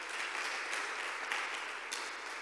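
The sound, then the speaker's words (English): An audience in church claps their hands together, a dense, steady wash of many overlapping claps that holds at an even loudness throughout, with no voices standing out above it. “Clap your hands and say a big amen.”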